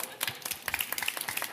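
A short burst of applause for a participant who helped with a demonstration using a guitar, many hands clapping in a dense, overlapping patter that stays fairly steady and moderately soft throughout, with no voices.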